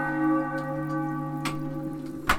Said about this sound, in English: When yon bell strikes three, under the axe thou shalt be.